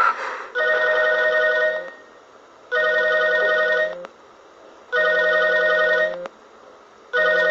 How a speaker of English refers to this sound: Her phone's ringing in the bathroom?